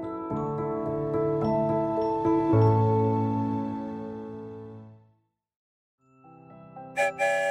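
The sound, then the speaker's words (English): A chiming musical jingle rings out and fades, then after a brief silence a train whistle blows with a steady, sustained tone, joined near the end by short noisy bursts. “There's the whistle, and we're on our way.”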